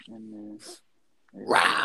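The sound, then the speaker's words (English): A low, rumbling Bengal tiger growl sounds, then after a short silence a louder, harsh, breathy roar bursts out and cuts off abruptly. “That was a Bengal tiger.”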